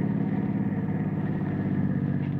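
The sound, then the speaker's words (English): A car engine drones steadily while driving to the bluffs on the Marylton Road, a low, continuous rumble with an even hum that holds at a constant, fairly loud level throughout, with no voices. “Ample time to drive to the bluffs on the Marylton Road before the tow car from the Hoffman Garage is due to arrive.”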